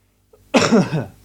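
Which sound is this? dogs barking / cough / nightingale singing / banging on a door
cough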